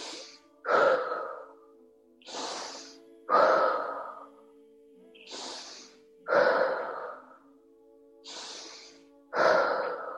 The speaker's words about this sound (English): Good. And we're just going to intensify that breath a little bit, transitioning into the halo active pattern. Still breathing in through the nose and out through the mouth, but with a little bit more intensity.